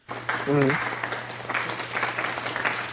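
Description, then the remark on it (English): A golf clap sound effect: soft, polite applause from a few people, scattered light claps continuing steadily for a few seconds, with a brief voiced sound near the start and a low steady hum underneath. “That's the golf clap.”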